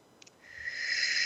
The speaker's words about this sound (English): So I'm going to do some breathing. Think about your kids because we're going to be sending them energy. As an energy healer, this breathing moves the energy, massive amounts of energy.